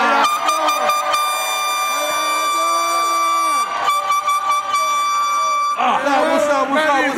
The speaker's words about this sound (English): Get my horn right there, dog. Get the horn, dog.